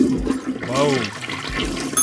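A toilet flushes loudly and close by, a roaring gush of water swirling for about two seconds with a gurgling swoop partway through, heard on its own.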